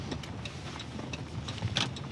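A car's low engine rumble and road noise heard steadily from inside as it rolls slowly, pulling up to a property and parking, with a few light clicks and rattles near the end; no one speaks.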